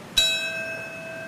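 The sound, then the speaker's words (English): A single memorial chime in Washington, D.C. is struck once and rings on with a clear, sustained metallic tone that slowly fades. It sounds alone at moderate volume, with no voices. “And in Washington, D.C., the chimes.”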